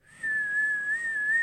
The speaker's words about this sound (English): That's a whistle. It's a little airy. Yeah, I need to work on it.